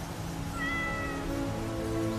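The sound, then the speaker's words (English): A cat, Catwoman's cat Miss Kitty, lets out one drawn-out meow, clear, rising and then trailing off over a steady hiss of background noise. No one speaks. “Oh, and Miss Kyle wants her cat back.”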